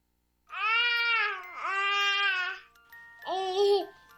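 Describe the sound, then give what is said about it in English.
A baby babbles in three drawn-out, tuneful vocal bursts with wavering pitch, the first two running together and the last one shorter after a brief pause, loud and with no other voices. “To some people, the sound of a baby babbling doesn't mean much.”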